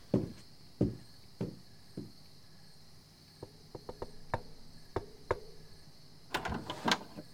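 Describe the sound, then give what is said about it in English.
A few heavy footsteps, then a run of sharp metallic clicks and a short rattling clatter as a door is opened, with a steady chirring of crickets in the background. “Please try not to scream when I open this door.”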